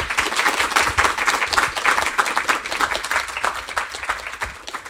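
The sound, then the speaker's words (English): An audience bursts into applause for the guests of a panel discussion on drug policy, a dense, steady wash of many hands clapping that holds strong for several seconds before gradually thinning out toward the end. “If I can have a round of applause for our guests, please.”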